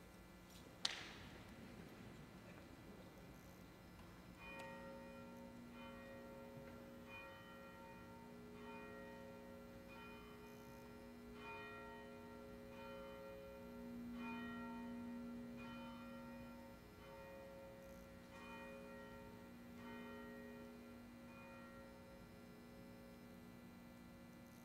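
A church bell rings to begin a worship service, with one sharp opening strike, then tolls steadily at a regular pace, its long tones overlapping and ringing on, fairly soft over a constant low electrical hum.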